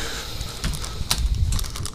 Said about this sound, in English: Oh, you're going to be able to hear the fireplace. Let me turn that off. What's going on? The fireplace is going to be able to be heard in the podcast. Does it click a lot? It clicks like the whole time, yeah.